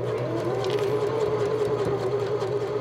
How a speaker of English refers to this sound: The Skirmerhorn Symphony Center is really noisy this week, but not with the sound of music. Power tools, hydraulics, sewing machines.